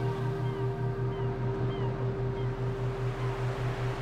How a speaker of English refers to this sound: Slowly, steadily, listening to the birds, the seagulls, soaring overhead.